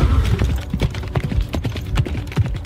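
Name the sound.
horse hooves clip-clopping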